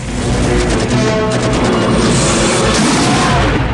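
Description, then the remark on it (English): A missile explosion destroying a village gun nest during an attack-helicopter raid erupts into a loud, sustained roar of rumbling blast noise and crackling debris, dense and unbroken for the whole stretch with no voices. “The nest is destroyed by a missile.”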